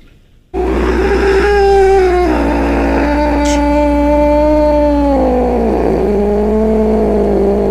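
An angry cat lets out one long, loud yowl lasting about seven seconds, its strained tone wavering and stepping between pitches, with a steady low hum underneath.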